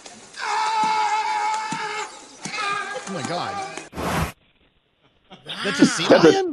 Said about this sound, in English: That's a sea lion screaming like Tom Hanks.